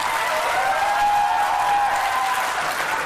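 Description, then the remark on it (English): A debate audience claps and cheers steadily for about three seconds, a dense, even wash of applause with a sustained whoop rising above it, with no talking. “Now, don't cheer during the debate.”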